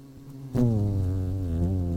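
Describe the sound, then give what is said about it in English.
A loud buzzing of the speaker's bees, heard over a phone line after they butt-dialed him, kicks in after a brief pause and drones on steadily, a dense humming swarm with slight wavering pitch. “Bees? Bees, what are you doing calling?”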